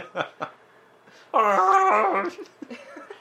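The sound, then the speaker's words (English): A couple of short, rough bursts lead into a loud, drawn-out growling roar lasting about a second: a woman's deep, barking, beastly cough. “She's got the Bigfoot cough.”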